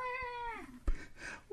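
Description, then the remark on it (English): A single drawn-out cat meow, clear, sliding down in pitch, followed by a brief thump and a faint second cry. “Get out of here, cat.”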